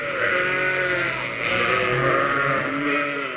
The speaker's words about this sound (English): Whilst that record of sheep is being played, here are the remains of a goon show washed up on a Brighton beach near Croydon.